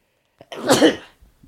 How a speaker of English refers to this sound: Excuse me one moment. I have to sneeze.